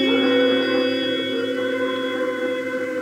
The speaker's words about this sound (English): So about once a day, when the train starts whistling off in the east, the folks in Dodge listen and remember that they're part of a bigger world outside.